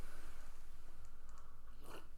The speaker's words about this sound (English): Sorry, I'm just sipping some coffee here.